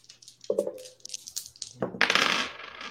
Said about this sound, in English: All right, so yeah, for the knife, it is you add an extra 1, so it'll be 2 dice plus 3. So go ahead and roll 2D plus 3.